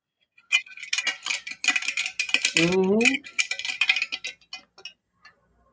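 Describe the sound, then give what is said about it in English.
Rapid, irregular clanking and clinking of pots and metal kitchenware rattles on for several seconds, with a brief rising tonal squeal partway through, then trails off into quiet. “I don't know what Anonymous is doing, but it's just random pots in the background”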